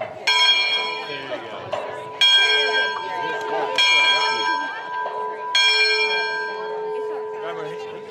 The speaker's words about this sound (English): Yesterday afternoon at 2:22, a crowd gathered high on Mount Sequoyah around an old belfry, taking turns ringing the bell in observance of the center's 100th anniversary.